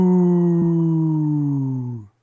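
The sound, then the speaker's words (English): A single loud, sustained wolf-like howl heard off in the distance, steady and tonal, sliding slowly lower in pitch over about two seconds before cutting off abruptly. “That was the first one was like the are you out there kind of call, wasn't it?”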